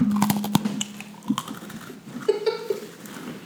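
Crunching on Halloween Oreo cookies: a run of sharp, irregular crackly bites and clicks, moderately loud, with a low steady hum beneath and no talking.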